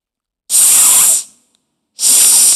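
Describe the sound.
A voice makes two sustained hissing "sss" sounds, the first about three-quarters of a second long and the second starting after a short pause, both loud, demonstrating the "s" sound at the start of the word snake in a phonics lesson.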